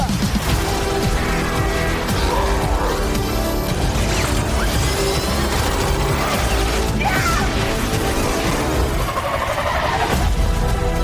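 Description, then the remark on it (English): A car engine roars and revs loudly as the vehicle speeds away, amid a dense wash of crashing and clattering noise that runs without a break. “I love this car.”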